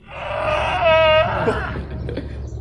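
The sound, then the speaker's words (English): A cow in a pasture, calling while her companion is away, lets out one long, loud bellow, a strained, wailing moo with a bright, harmonic tone that holds steady and then breaks off, leaving faint rustling behind. “And this is the noise that she made.”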